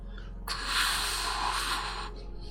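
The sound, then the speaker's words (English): A voice imitates rain drops falling into a cave, sounding distant but echoing: a steady, breathy hiss that swells in, holds for about a second and a half, then cuts off, with no words spoken. “And then the rain sounds distant but echoing. The drops falling into a cave. You made the sound of that now.”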